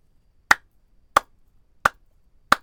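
Four sharp, crisp claps in a slow, steady rhythm, each sounding alone against near silence with no voices, clapping for Brandon Staley of the Los Angeles Chargers getting his first coaching win in the NFL.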